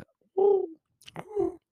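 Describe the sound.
Someone mimics a pigeon's coo with two low, throaty, warbling calls, the second following after a brief pause, fairly loud with no other sounds.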